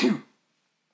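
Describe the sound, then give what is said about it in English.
A single loud sneeze bursts out at the start and fades within a fraction of a second, followed by silence and a faint click at the very end. “Bless you.”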